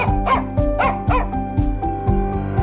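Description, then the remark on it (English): Flossie the Counting Dog, a Britain's Got Talent finalist, barks in a quick series of sharp yaps, loudest early on, over a steady rhythmic music bed that keeps pulsing underneath. “And here to give their views on how we should react is Britain's Got Talent finalist, Flossie the Counting Dog.”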